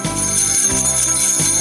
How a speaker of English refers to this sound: Jingle Bells, Just the Bells. Festive magic is just a ring-a-ding away.